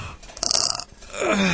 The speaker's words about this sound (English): We're all yawning in the studio.